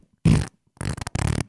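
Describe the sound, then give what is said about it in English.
A voice imitates a fart with three quick, buzzy, sputtering blasts, fairly loud, the last two rattling bursts running almost together. “I mean, even if you knew you're going to fart like that, wouldn't you stay on one other side of the fucking pool table”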